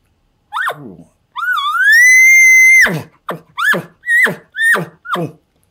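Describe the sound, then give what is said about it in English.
An elk's roundup bugle, alone: a short soft bark, then a long high, whistling whine, followed by a quick series of about five grunting chuckles. “It's usually a soft bark, a little whine in the middle, and two or three chuckles.”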